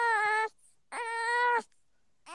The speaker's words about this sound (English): Oh, he sounds like a little cat. When he cries, he does like these little moans and he goes, wow. He sounds like a cat.